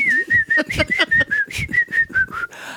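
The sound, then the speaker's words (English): A person imitates a steady, high whistling tone by mouth, holding a near-constant pitch for nearly three seconds, with soft breathy pulses under it, fairly loud. “Yeah, you can get a constant whistling sound.”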